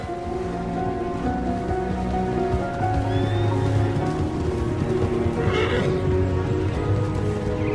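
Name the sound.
horse neighing and whinnying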